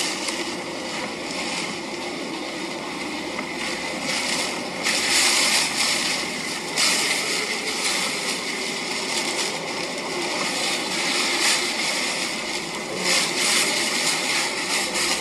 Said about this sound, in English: Well, not in the video, you guys cannot see, but you're hearing the effect of the wind itself.